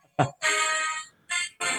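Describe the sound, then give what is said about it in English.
A few bright, tinny bursts of the brassy Michigan college fight song play from a small phone speaker, fairly loud, with short gaps between the phrases. “I have to get my Michigan fight song in there.”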